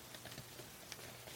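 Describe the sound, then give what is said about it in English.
Soft crinkling and rustling of an 8.5 by 14 inch paper poster being folded back up, quiet, a steady stream of small crackles with no voices. “You can't figure out how to fold that back right, can you? I'm figuring it out.”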